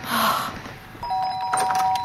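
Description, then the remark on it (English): An electronic doorbell at the door chimes with steady, bright tones that hold and ring out over a soft background hiss, with no talking. “Richie, did you hear the door?”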